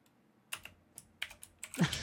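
Rapid typing on a computer keyboard, a quick irregular run of crisp clicks and clacks, ending with a slightly heavier thump as a key is struck harder. No one speaks.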